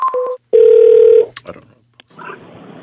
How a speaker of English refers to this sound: Hey, we got to make a phone call.